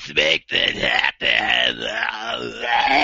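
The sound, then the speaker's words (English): A voice imitates wrestler Luna Vachon's growl: loud, raspy, unintelligible vocal bursts with harmonic snarling, broken by two short pauses, rising and falling in pitch for about three seconds. “That's pretty much just like growling and being unintelligible.”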